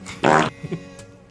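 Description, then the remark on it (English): A voice imitates a gun being cocked: one loud, raspy burst lasting about a quarter second, followed by two soft, quick sounds and a faint breathy tail, with no talking. “That's not pulling a trigger though. No, it's not. It's cocking the butthole.”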